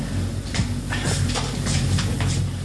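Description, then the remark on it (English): A door opening: a steady low mechanical rumble runs throughout, with a series of brighter rattling clacks recurring about every half second. No one speaks. “Oh, sorry, the door's opening.”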